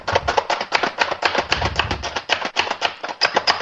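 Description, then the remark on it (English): Rapid, steady clacking and crunching as a small hand-operated food chopper, a big dome with blades under it, quickly chops about a cup of pecans, dense repeated strikes with no talking. “Just chopping my nuts up with our little food chopper here real fast.”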